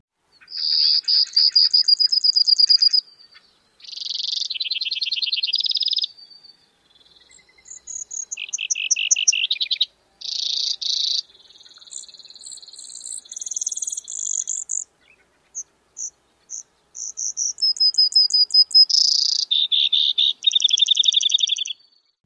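A Brewer's sparrow sings a long, complex song of alternating trills, some buzzy and some more musical, running in distinct sections with short gaps over about twenty seconds, clear with no talking.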